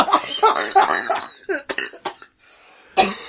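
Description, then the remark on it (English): A man's voiced laughter breaks into a run of harsh coughs and strained, gagging throat sounds, then a short silence before one more loud coughing burst. “His laughs turned to coughs turned to wrenches.”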